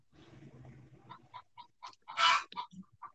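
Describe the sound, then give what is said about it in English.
Chickens clucking in a busy barnyard, short choppy clucks in an uneven rhythm with one louder squawk near the end, with no one talking. “Man, fucking chickens.”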